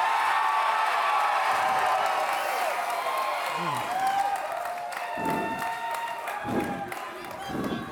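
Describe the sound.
A crowd applauds and cheers steadily for several seconds, a dense wash of clapping with shouted voices and whoops rising above it, staying loud throughout.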